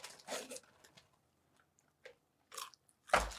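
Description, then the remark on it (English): Crunching of dried jalapeno pieces, a spicy seasoning snack: a series of sharp, crackly bites spaced irregularly, with quieter chewing between them and a final loud, heavy crunch at the end. No one speaks. “Jalapeno pieces. Yeah. See, this is a seasoning.”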